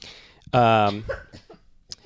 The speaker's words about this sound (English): So I have to edit coughs out of another episode. That was a very light cough.